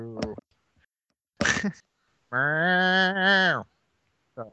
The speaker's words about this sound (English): Somebody let the goat out. Again?